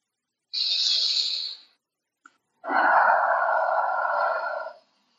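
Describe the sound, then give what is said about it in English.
A sharp, airy inhale lasting about a second, a brief pause, then a long, fuller exhale sighing out for two seconds, clear with no talking. “Does it want to release it with a breath again?”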